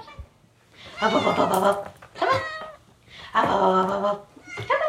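A female cat meows repeatedly, four drawn-out, wavering calls in quick succession with brief pauses between them, the last one cut short.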